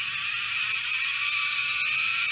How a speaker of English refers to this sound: Yeah. Oh, it's a zip line. It is a zip line. Well done.